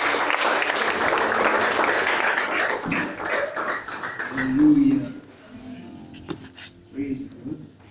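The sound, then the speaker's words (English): A church audience applauds a preacher invited up to speak, with dense, steady clapping for several seconds and voices calling out over it, before the applause fades into scattered shouts and murmurs. “Let's applaud the man of God.”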